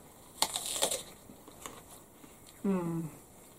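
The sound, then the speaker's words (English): Someone bites into an apple with a loud, crisp crunch, followed by a few quieter chewing crackles, then a brief low hummed vocal sound. “I love the sound of crunching apples.”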